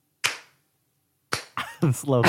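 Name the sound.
slow hand clapping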